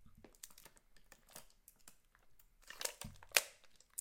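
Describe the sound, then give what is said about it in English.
Someone drinks from a plastic water bottle: scattered crinkles and clicks as it's handled, then a louder crackle and a soft low gulp near the end. No one speaks. “Let me take a swig of my water first.”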